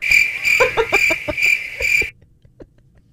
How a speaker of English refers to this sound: I'm surprised the cricket showed up.